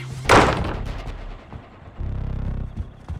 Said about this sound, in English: I cover my ears, run inside and slam the front door shut.